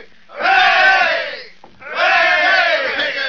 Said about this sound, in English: Come on, fellas. 3 cheers for Rigger McClure. Hooray!